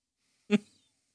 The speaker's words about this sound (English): Y'all hear me breathing on this bitch? Yes, I can hear you. Yeah, Darth Vader.